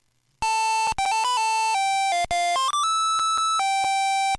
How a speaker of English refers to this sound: So even though it's still a bunch of beeps, they actually were able to take and make that Contra game have some recognizable themes, which was kind of a shock.